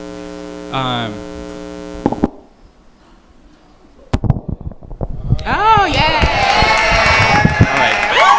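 A steady electrical hum fades to near silence, then a live show audience bursts into clapping for a person being introduced, swelling into loud, sustained cheering and whooping, energetic through the end.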